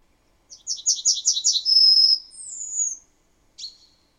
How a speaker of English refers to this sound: So all the birds do the chip, chip, chip, chip, chip, but then there's that zi, zu, and that is what's different in the different populations. We'll play it one more time. Listen for those two longer notes at the end.